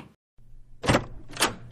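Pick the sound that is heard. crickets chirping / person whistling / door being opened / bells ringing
door being opened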